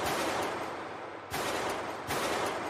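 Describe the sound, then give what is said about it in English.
Loud gunshots ring out outside a Home Depot store in Lindbergh in a quick, uneven series, each sharp crack trailing into a wash of echoing noise, with no voices present. “It's gunshots.”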